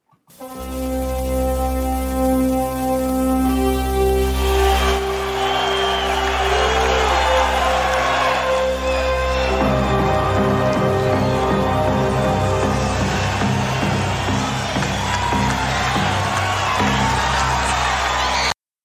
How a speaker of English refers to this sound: It's funny because you hear the crowd in the background. I couldn't find his original NWA theme, so I ended up getting it. I took it off Starrcade 87. That's why you hear the crowd in the background.